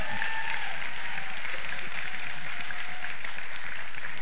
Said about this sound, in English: And we're truly blessed to celebrate the birth of our Lord and Savior, Jesus Christ. Can we give Jesus an amazing hand clap of praise?